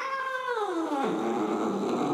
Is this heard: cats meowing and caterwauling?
yes